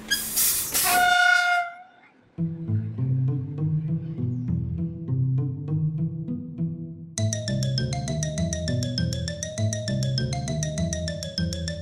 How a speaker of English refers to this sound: Every now and again, a burst of steam would shoot out of its backside with a whistling sound.